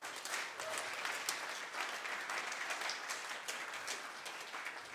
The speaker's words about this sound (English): You know, the way you clap, you don't clap like if you are in the house of God.